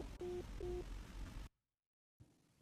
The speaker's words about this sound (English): hangs up the phone.